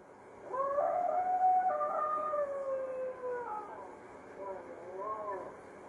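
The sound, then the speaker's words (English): A dog howls in a long, wavering, drawn-out cry, followed by a couple of shorter, fading howls, moderately loud against a quiet, slightly noisy background. “Bye-bye, doggy.”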